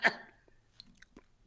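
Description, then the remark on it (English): A man chewing: a sharp crunchy bite at the start, followed by a few soft, irregular mouth clicks and smacks in otherwise quiet surroundings, with no talking. “I'm going to give him a second. Bologna. To finish chewing.”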